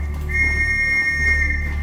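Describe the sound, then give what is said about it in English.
A single sustained, piercing whistle blast holds steady for over a second, shrill and loud above a low rumbling background. “The whistle comes again.”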